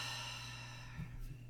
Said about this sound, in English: Take another breath in. Hold and release through the mouth. And one more deep breath in. Hold at the top and release.